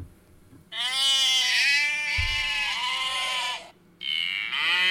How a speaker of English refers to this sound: But what about some sheeps?